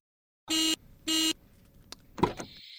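A car horn honks twice at a ferry landing, two short, loud, evenly spaced blasts with a buzzy, steady pitch, followed by quiet and a brief clunk and a faint high tone.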